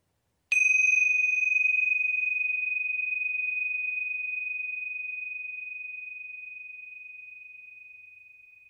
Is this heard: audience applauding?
no